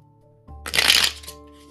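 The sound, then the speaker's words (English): A short burst of tarot cards being shuffled, a quick papery riffling rush that swells and fades within about half a second, fairly loud over a low steady hum, with no talking. “Gonna do a little shuffly shuffle.”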